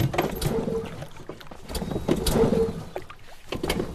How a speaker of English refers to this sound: The boat's motor just quit. Oh, maybe we should have picked out a better motor then. Yeah, right. With a bigger boat attached to it. Okay, you guys, take it easy, all right? I'll just restart the motor.